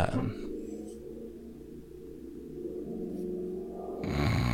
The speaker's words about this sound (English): can you hear the truck in the background? Yes, I did hear that. It was very loud. Just farting down the street. Was not even the street in front of our house, but several streets over. Because Tennessee.